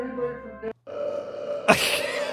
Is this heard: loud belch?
yes